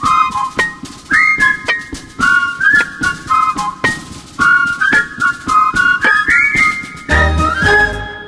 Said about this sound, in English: Is that whistling I hear? Nope. It's a bumper.